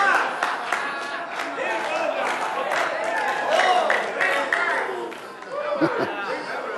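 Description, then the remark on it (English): An audience at a sermon on Pentecost and the baptism of the Holy Ghost cries out and shouts amen, many voices overlapping in a loud, continuous, excited clamor, with scattered claps mixed in and a few higher wailing calls rising near the end. “You people make too much noise. I tell you, all this crying and saying amen.”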